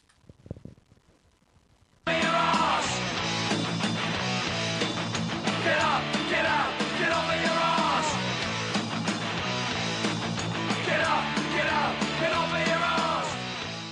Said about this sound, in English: Okay, so here you go. Here's our little jingle for us.